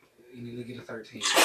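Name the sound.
sneeze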